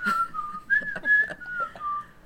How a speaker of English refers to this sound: We could put the shitty flute version in. Like we did at the end of the Megamorph.